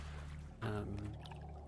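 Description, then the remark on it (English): Water sloshes and pours in a low, steady wash, swelling into a fuller surge partway through before settling back. A deep hum runs underneath, with no voices. “There's not but the sloshing of water, the creaking of decks, the breathing of our people.”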